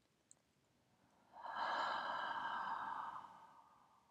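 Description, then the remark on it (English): A single long, slow breath during a guided breathing exercise, soft, rising gently after a quiet pause and flowing steadily for about two seconds before fading away. No one speaks. “Breathing long, slow breath.”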